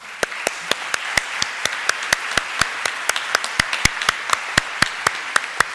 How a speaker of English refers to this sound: So we just wanted to thank you for all that you do. So if we can give them a round of applause.